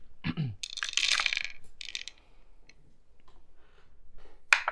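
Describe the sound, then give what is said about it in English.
A small eight-sided die, rolled for damage, clatters across a table in a quick burst of hard clicks, tumbles through a few quieter taps, then lands with one last sharp click. No one speaks. “Roll my D8 for damage. Where's my D8? Come here, dice.”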